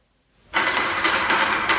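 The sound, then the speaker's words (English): After a moment of silence, a loud, dense rattling clatter bursts in, like a shower of stones pelting down, as ape men attack by throwing spears; it keeps going steadily with slight surges and no voices. “What the dickens is that? Sounds like a shower of stones.”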